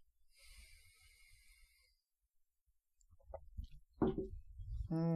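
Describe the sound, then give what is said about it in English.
A long, airy sniff of Old Camp Wolf Moon whiskey is followed by a pause, then a few soft wet sipping and swallowing noises of the whiskey and a brief voiced exhale at the end. No speech. “Let's take a little sniff test and little swig.”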